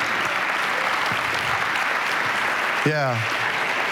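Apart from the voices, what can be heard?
golf clap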